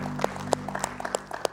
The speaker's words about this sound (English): Let's give him a hand clap of praise, would you? Thank you, Lord.